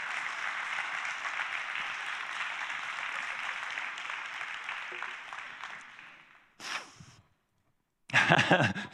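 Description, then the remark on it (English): Steady audience applause for several seconds, then fades and breaks off, followed after a short gap by a brief loud burst of clapping. “You ought to clap that in.”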